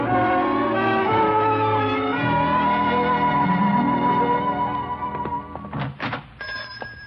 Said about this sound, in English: little bells. There's something mighty nice about a music store.